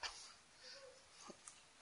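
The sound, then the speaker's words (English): A voice imitates a dog barking with a few short, yappy bursts, one at the start and a sharper one at the end, separated by soft breathy noise and quiet gaps. “but there's a dog back.”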